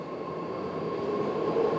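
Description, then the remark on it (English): A BART commuter train rumbles through a station in San Jose on a warm evening, a steady dense roar with a thin whining tone on top, growing slightly louder as it nears. No one speaks. “It's a warm evening, and I'm hanging out at the BART train station in San Jose.”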